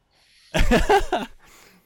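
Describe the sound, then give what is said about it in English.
A voice imitates Tony Soprano from The Sopranos eating and breathing, with heavy breathing and snorting in one fairly loud burst of rough, voiced huffing, trailing off into a softer breathy exhale. “So a lot of him just eating and breathing, which is honestly my favorite part of the fucking show.”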